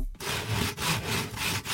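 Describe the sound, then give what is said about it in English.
Rhythmic back-and-forth sawing through wood, played as a sound effect in place of applause, with steady rasping strokes broken by brief pauses, fairly loud and with no voices. “That was supposed to be the sound of applause, but it sounds like that was a round of saws.”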